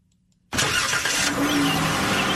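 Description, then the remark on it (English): After a brief moment of near silence, a car engine abruptly catches and roars to life, then keeps running loud with a steady, rough mechanical rumble and no voices. “On the WTOP car review, as we take a look at a vehicle that has no internal combustion engine to crank up, it's Toyota.”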